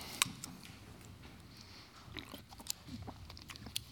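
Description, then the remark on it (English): A preacher takes a quiet sip of water during a church service before reading scripture, with a few sharp wet mouth clicks and a soft swallow over a low background hum. No one speaks. “We'll get a sip of water here, and then we'll read God's word.”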